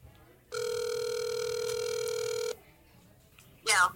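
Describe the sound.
A phone line ringing on an outgoing call to a friend on speakerphone: one steady, buzzy ringback tone lasting about two seconds, then quiet, with a short burst of a voice right at the end.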